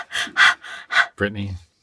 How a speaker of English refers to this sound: Desperately. Desperately. that shows desperation, the breathing.